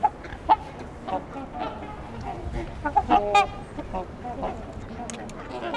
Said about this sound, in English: There's a lot of familiar quacking sounds. Some ring-billed gulls in the distance too. A little harder to hear though.